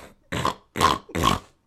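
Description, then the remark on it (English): A person imitates a pig's snort with three short, loud, grunting bursts in quick succession, with brief pauses between them and no talking. “I gotta try to do a pig noise better.”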